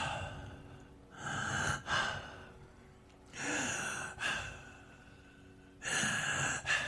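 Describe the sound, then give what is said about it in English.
Loud, exaggerated breathing by a man in a played song recording: several heavy, drawn-out inhales and exhales in a slow, steady rhythm, each breath a broad airy rush separated by brief quiet pauses, with no talking. “Okay, let me give that a running start and let him do the whole breathing thing without me interrupting it.”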